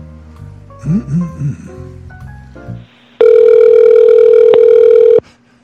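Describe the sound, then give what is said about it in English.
A phone line rings once, a single loud, steady electronic tone lasting about two seconds, heard through the receiver after a few seconds of quieter, muffled sounds. “Thank you for calling”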